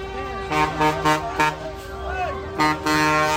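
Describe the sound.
Truck horns honk in a string of short, loud blasts over a steady droning tone, with voices calling out in the background between the bursts.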